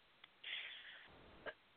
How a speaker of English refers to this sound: We're both coughing today, so clearly it's allergy season.